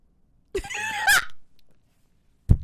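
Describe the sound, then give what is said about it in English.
A person lets out a loud, harsh scream-like cackle right up close to the microphone after seeing someone's lip quiver, lasting under a second with a shrill peak at the end, followed by quiet and a single dull thump. “Why'd you scream in the mic like that?”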